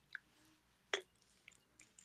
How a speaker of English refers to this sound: Let me take a sip of my JMO.